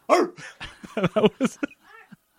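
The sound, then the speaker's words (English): A dog named Eva barks in a quick run of sharp, high-pitched yaps, about eight in a row, then trails off with a softer, whiny sound at the end. “No, you should not be barking at this time.”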